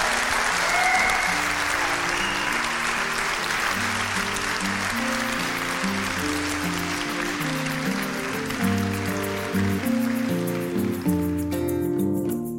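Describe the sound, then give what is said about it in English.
A live audience applauds loudly and steadily for Davina McCall, a dense wash of clapping lasting the whole stretch, with music playing underneath and fading toward the end. “And I'd love one more massive round of applause for Davina for our live podcast.”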